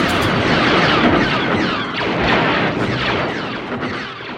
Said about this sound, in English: He found this great wire out in the middle of the desert and took a contact microphone out and put it on the wire and started hitting it with a wrench. And what he got were the bass of the blaster sounds for Star Wars.